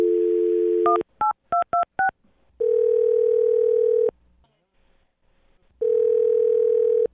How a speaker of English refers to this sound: I'm going to dial the phone number right now and see if we can get her on the phone, okay? Okay. All right, here we go.